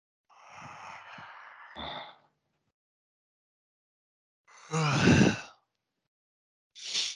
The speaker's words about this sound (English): Wow, what a good yawn that was.